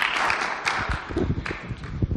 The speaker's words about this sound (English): But won't you just welcome them? I know we don't applaud because we applaud Jesus, but applaud them. Just as friends.